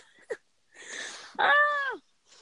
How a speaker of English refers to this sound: Sorry, I had to cough.